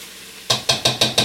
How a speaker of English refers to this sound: So we're just frying the ginger and onions till it's translucent.